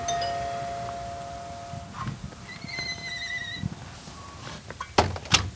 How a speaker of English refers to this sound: Then you stop in front of an old storefront. It doesn't look like much on the outside. I mean, in fact, it looks like nothing at all. Until you open the door.